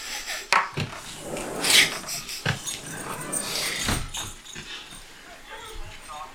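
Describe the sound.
A dog shuffles and moves about, with scraping and knocking, and gives a couple of short, high whimpers. Faint background voices mix in.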